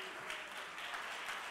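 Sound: audience clapping hands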